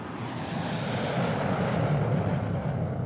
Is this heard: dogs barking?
no